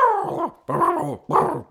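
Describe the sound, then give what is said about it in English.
A person imitates a turkey gobble with three warbling, throaty bursts, each about half a second long, separated by short gaps and fairly loud with no other talk. “I don't know what turkeys sound like. I'm pretty sure I'm close.”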